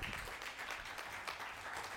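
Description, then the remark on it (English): An audience applauds, with many hands clapping in a dense, steady crackle that stays fairly loud and even for the full two seconds, with no voices standing out. “I feel like we should give the Bible a round of applause.”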